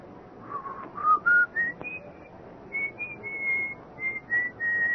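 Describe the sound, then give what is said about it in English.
A person whistles an old tune, a slow, wavering melody with sustained notes that rise and hold, clear, over a low background hum with no talking. “a little after midnight, just after I'd gotten into bed, I heard it, the whistling. It was an old tune”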